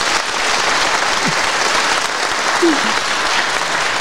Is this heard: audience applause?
yes